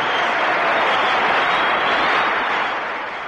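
A loud, sustained roar from a large crowd at a hockey game as players Bailey and Shore meet in a reunion, a dense wash of cheering and applause that holds steady for a few seconds before easing slightly at the end.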